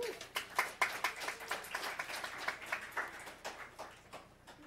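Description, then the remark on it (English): An audience at Detroit City Council breaks into applause for an award of recognition, a dense patter of many hands clapping at once, steady and moderately loud for a few seconds before tapering off slightly at the end. “You can clap if you want.”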